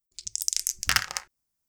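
Percentile dice rattle and tumble across a hard surface: a quick run of sharp, bright clicks building to a louder clattering burst, then stopping abruptly into silence. No voices.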